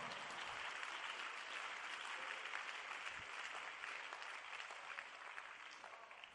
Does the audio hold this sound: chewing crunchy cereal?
no